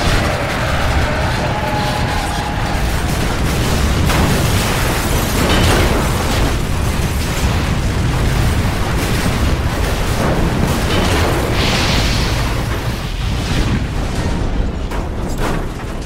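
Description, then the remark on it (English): A G6 jet crashes on the tarmac and explodes, a loud, sustained roar of crunching debris and booming blasts that stays dense and forceful for the whole stretch, with no voices. “are you okay after that that G6 just crashed on the tarmac and you went flying out?”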